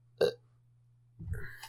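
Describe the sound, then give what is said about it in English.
A single small, short burp sounds quiet, followed after a pause by a low muffled rumble of handling noise over a faint steady hum. “That was an itty bitty burp for our next itty bitty episode.”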